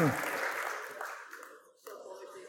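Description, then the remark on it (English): A short burst of audience clapping, dense and fairly loud at first, then thinning out and fading over a couple of seconds. “Give him a clap.”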